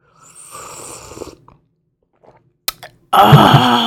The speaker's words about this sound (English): Hey, let me obnoxiously take a sip of this coffee. Hang on a second.